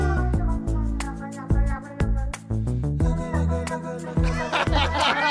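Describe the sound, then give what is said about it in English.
A groovy, steady song with a chill groove, punchy beats and warm bass, with cat meows woven into the melody; near the end, a man's wavering, yowling singing rises over the music, harmonizing with the cat. “Now he's singing. Harmonizing with the cat.”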